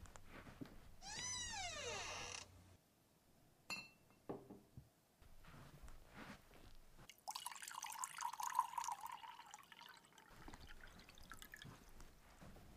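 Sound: water running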